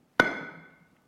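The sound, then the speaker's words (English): A single loud hammer blow lands with a sharp crack, then a bright metallic ring fades out over about a second. No voices. “Felt like somebody was pulling a hammer out. And they were trying to demolish my foundation.”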